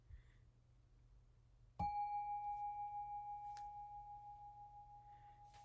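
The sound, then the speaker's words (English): A single ceremonial bell is struck once to end a brief period of seated meditation, ringing out with a clear, sustained tone that slowly fades over several seconds, heard alone against a quiet hum. “As I prepare to sound the bell to end this brief period of sitting, and before we invoke the verse of the robe, if your eyes are closed, open them so that as you hear the bell, you can also see your friends bowing with you.”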